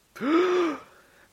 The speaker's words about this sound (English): I'm just going to make sure I've taken enough breath. I'm breathing. It's okay.